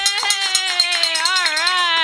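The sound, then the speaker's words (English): A wine glass, struck like a bell on Catholic radio to mark a pledge, rings out holding one bright, sustained tone with rich overtones that wavers gently in pitch for about two seconds, with faint ticking taps underneath and no voices. “he's got a bell. Listen to that.”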